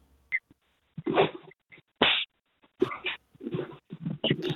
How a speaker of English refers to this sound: I want to hear you slap that ass. Hey, you want me to slap that ass? Let me hear it. Smack that ass. Smack it hard.